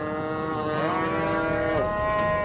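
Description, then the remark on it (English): A cow gives one long, loud, drawn-out moo, its pitch sliding and wavering, with no voices and faint background noise underneath. “We have to brand our own cattle every year like everybody else does.”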